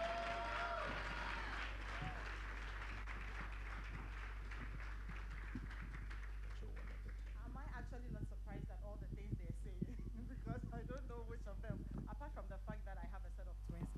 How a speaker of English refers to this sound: Ladies and gentlemen, with a resounding round of applause, let's welcome